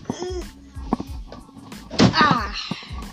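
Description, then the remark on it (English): A door being shut, with several dull thumps and a brief rattle as it swings closed and latches, followed by a short scraping squeak. “There we go. It always had to shut my door.”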